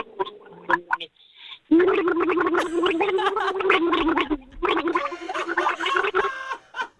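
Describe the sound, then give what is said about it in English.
Water gargled steadily in the throat for several seconds to the tune of Silent Night, the bubbling rising and falling in pitch with the melody, with a short pause before it continues. “Go ahead and drink some of that water and then gargle away.”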